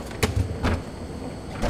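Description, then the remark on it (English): A convenience store freezer door opens with a few sharp clicks and soft thumps, spaced unevenly over a low background hum, moderately loud, with no voices. “Freddy Wheeler walked back to the freezer of the convenience store and opened it up.”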